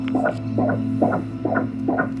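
A fetal heartbeat from an ultrasound monitor: five quick, evenly spaced whooshing pulses, fast and steady, over a constant electrical hum, with no voices.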